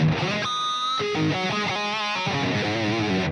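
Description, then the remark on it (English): Crunchy overdriven electric guitar through an Ibanez TS (Green 808) overdrive pedal, playing a string of sustained chords and bending notes at a steady, loud level with no voices. “Let's see what the tone sounds like on That's this. Definitely crunchy.”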